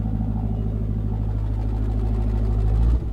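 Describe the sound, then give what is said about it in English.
A TRX pickup truck engine fitted with a Borla aftermarket exhaust idles with a deep, throaty exhaust rumble, steady and loud throughout, with a slight shift in tone right at the end. No one speaks. “So what are you thinking, Borla exhaust? Are you starting to jones for that as your first mod on the TRX?”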